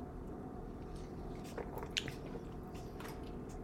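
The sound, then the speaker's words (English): Someone quietly sips a hard seltzer, with a few soft wet slurps and a small gulp rising briefly over a steady low hiss, no talking. “It tastes like hand soap.”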